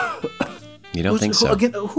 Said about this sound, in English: Excuse me. I'm sorry. I'm coughing so much. There are allergies happening now in Ohio, and I am coughing like crazy.